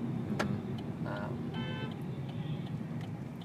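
A car horn honks briefly over the steady low rumble of street traffic near Old Trafford stadium, where everyone is trying to get towards the stadium. A second, shorter beep follows. Both are fairly loud against the busy road noise.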